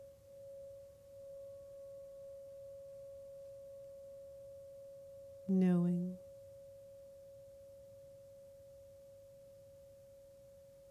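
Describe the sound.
A Tibetan singing bell rings during a mindful awareness meditation, with a steady, pure mid-pitched tone that hums evenly throughout, while a single soft spoken word briefly rises over it partway through.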